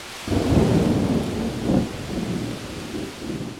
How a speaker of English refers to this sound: Just as they were staring out the window, the sky started to fill with storm clouds. Thunderclaps sent the children jumping.